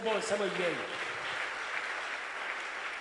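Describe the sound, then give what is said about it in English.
A crowd claps in a dense, steady wash of applause that holds for a few seconds, with a voice briefly calling out over it at the start. “I thought you were clapping this morning.”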